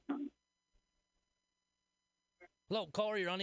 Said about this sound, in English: That's a dog.